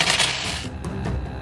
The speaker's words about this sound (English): Oh, man, that's a lot of ones. That was a lot of dice.